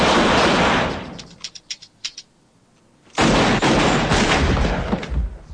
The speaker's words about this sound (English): All right. Now, what happened here is a guy came out of the bathroom, shot at them, all the bullets missed